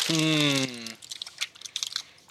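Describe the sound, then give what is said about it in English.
A short hummed voice tone gives way to irregular, crisp crunching and chewing sounds, a series of small uneven bursts of moderate loudness, as someone eats dinner. “I'll mute my mic a bunch so I can eat my dinner.”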